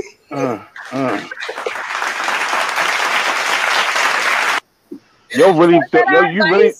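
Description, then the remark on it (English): An audience breaks into steady applause for about three seconds, a dense wash of clapping that stops abruptly, with talking voices before and after it. “Put your fucking disclaimer back up because you're not gonna applaud that.”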